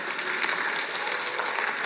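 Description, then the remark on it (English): A church audience claps steadily, a dense, continuous patter of many hands at moderate loudness, with no voices standing out above it, applauding members who have been in the church over 40 years. “Anybody over 40 years? Come on, keep applauding.”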